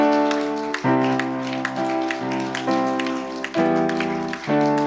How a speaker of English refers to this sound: In the name of Jesus. Let's clap our hands.